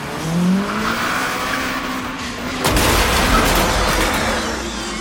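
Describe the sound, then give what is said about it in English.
Carface's demonic hot rod, with creatures sprawled across its hood, screeches its tires as it brakes to a halt over a roaring engine, with a sudden heavy burst midway and a low rumble continuing after. No one speaks. “Screeching to a halt, Carface threw the creatures from his hood, sending them flying through the last wall of the place, where they disappeared from sight.”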